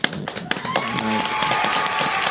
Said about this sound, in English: Time out. Oh, we should clap it up.